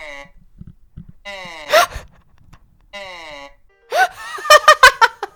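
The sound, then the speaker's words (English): A reconstructed voice of an ancient Egyptian mummy, made from CAT scans of the mummy: a few drawn-out, buzzy vowel moans with wavering pitch, separated by short pauses, the last one louder and broken by sharp choppy bursts. “What sound does an ancient Egyptian mummy make?”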